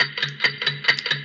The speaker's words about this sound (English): Clock ticking.